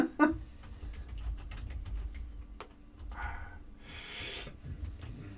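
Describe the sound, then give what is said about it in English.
Quick, irregular clicks of keys being typed on a computer keyboard, fairly quiet, with some soft rustling and a brief hiss partway through. “typing on computers.”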